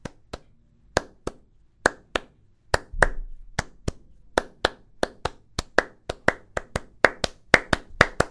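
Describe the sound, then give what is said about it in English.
Children imitate a steam train pulling away with sharp, rhythmic claps and taps, starting slow and spaced out, then gradually speeding up into a steady, quickening chugging beat. “So we made an accompanying soundscape. So the door slides open. Shh! The conductor's whistle blows. The train starts to move.”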